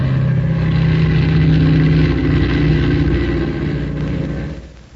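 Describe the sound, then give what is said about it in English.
A transport plane takes off with the wind, its engines roaring in a loud, steady low drone with a humming tonal pitch. The drone holds for several seconds before fading slightly at the end. No one speaks. “Boy, I never seen one of them transport planes take off like that before.”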